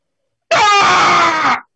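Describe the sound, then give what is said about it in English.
A single loud, piercing scream rings out from outside for about a second, harsh and sustained, then cuts off abruptly, with no talking around it. “You hear a scream come out from outside.”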